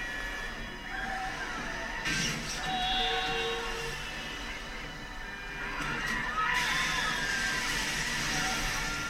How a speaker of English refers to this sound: Fucking rain is just incessant.